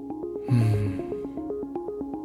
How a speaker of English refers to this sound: Deep breathing normalizes brain activity. Let's take a breath together.